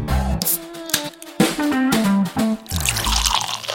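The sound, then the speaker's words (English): Ardbeg Corrievreken whisky glugs from a bottle into a glass, the gurgling pitch rising as it fills, then a short second pour follows after a brief pause, with no talking. “I'm going to go grab a couple of glasses. Let's get this Ardbeg poured out and get into today's sip.”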